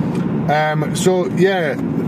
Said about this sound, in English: In the car. Beautiful evening. Driving to Fife.